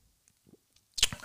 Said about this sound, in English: If I burp y'all, I apologize. I'm drinking my seltzer right now. I'm pretty thirsty. Hold on 1 second.